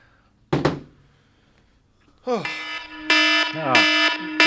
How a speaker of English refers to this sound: Let me go get the alarm. Let me get the horn.